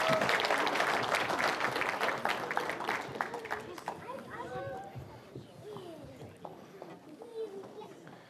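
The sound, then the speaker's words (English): Loud applause from an audience for a group of children fills the room, dense clapping that gradually thins and fades, with children's voices and chatter mixing in underneath as it dies down. “Hey, let's give these kids a round of applause.”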